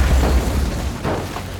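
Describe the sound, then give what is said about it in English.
A plane crashing after veering off a grassy runway while failing to gain enough speed to take off: a loud, deep rumbling boom with heavy low-end thunder, followed by a second crunching impact burst midway, with no voices. “The plane veers off the runway and crashes.”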